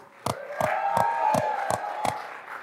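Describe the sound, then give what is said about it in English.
Weak audience applause welcoming a guest speaker at a social media marketing talk: about six sharp, evenly spaced claps in a slow steady rhythm, with a murmur of crowd voices running underneath, fading out near the end. “Come on, give Tessabella a round of applause. A real one.”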